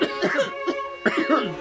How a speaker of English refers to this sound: But then someone started to cough. And then more people began to cough.